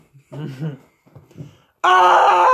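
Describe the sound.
A voice acts out a character waking up and screaming through his gag: smothered, moaning cries in two short bursts, then a sudden loud, bright, sustained scream that cuts off abruptly.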